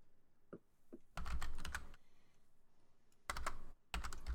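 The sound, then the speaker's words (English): Fast bursts of typing numbers on a computer keyboard, a couple of isolated taps followed by two clusters of rapid clicking keystrokes, fairly clear with no talking. “Type the numbers right.”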